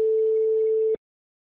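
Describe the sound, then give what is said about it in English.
A phone ringback tone heard while calling someone who does not pick up: one steady, loud electronic burr lasting about a second, then cutting off abruptly into silence. No voices. “Don't be like that. Pick up your phone, big fella.”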